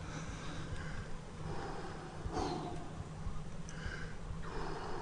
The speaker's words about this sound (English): What's this? Breathing. The breath. The breath is the life force. If you control the life force, the force of life is with you. And there is nothing that can stop you.